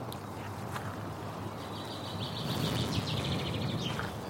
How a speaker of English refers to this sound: Analyzing. Top matches: chaffinch, nightingale, or redstart. Oh, damn it. It was a yellowhammer. Chaffinch, that seems likely.